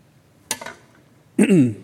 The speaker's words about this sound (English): Let me take just a little sip of water.